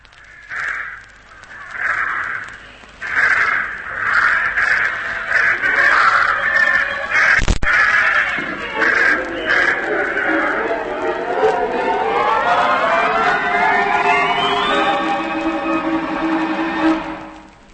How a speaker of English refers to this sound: I'm ready to throw, Biggles. You in position yet? Yes. Send those birds up and I'll be off. Then here goes!